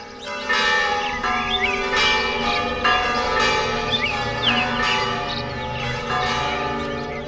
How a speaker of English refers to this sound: Tens of thousands of church bells, which hadn't been rung in 2 years, all ringing at once across an entire country.